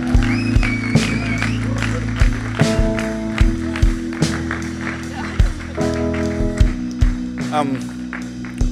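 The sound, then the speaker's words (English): A crowd of people applauding after a baptism, with scattered claps and sharper slaps rising over a steady patter for several seconds, and voices murmuring and calling out underneath. “Let's give her a clap.”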